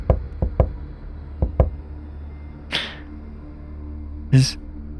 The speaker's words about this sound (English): Do I hear anything whenever that knock happens? Against the door, you hear a...